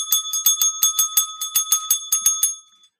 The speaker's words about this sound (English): Oh, here comes the bell again. Oh, here comes breaking news.